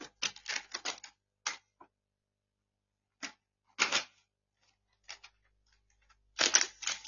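Close, scratchy strokes of a pen writing on paper come in short bursts and clusters, separated by brief pauses, with no talking.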